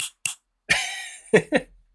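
An empty drinking glass being handled: two quick taps, then a hollow, ringing tone that holds for about half a second, followed by two more short knocks. Nobody speaks.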